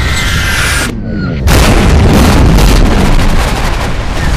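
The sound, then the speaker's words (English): A high whistling tone cuts off into a brief lull, then loud Sanshiki beehive flak shells burst in a rapid, rumbling barrage of booms and crackling pops that continues without letup. “gigantic flak bursts explode into screaming black tendrils, punctuated by crackling white-hot electric green neon lightning.”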